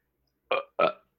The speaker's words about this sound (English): Sorry, I had a burp there.